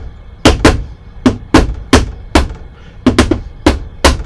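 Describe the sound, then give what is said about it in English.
About a dozen sharp, loud knocks on a door in an uneven, stop-start rhythm, some spaced out and some in quick clusters, with no voices. “What a strange knock on the door.”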